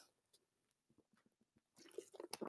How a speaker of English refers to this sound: Let me take a sip here.